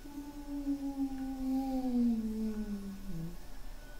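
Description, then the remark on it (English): A single howl in the distance, a steady mid-pitched wail with soft overtones that slowly slides downward for about three seconds, then trails off into a low hiss. No voices. “Off in the distance, you again hear another quick howl.”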